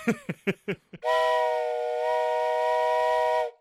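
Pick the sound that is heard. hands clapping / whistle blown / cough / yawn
whistle blown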